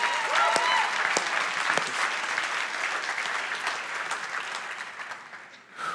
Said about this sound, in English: Can we just like, just clap our hands or something? I just want to praise the Lord for being here in this room.